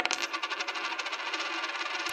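A penny drops onto a hard surface and rattles, its bright metallic chatter running in quick, uneven pulses for about two seconds before a final clink. No voices.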